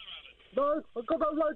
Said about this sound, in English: Hang on. Who's got a radio on in the background?